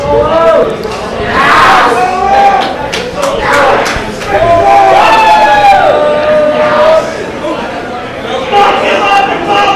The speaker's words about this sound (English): As you can tell by the crowd, Apollo's working on Zach right now.